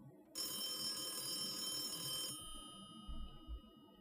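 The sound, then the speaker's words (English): A telephone rings once in a single sustained, bright electronic burst lasting about two seconds, then falls silent, leaving a faint low background rumble with no one speaking. “Answer the phone in silence.”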